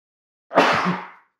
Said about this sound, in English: Oh boy, I'm going to sneeze.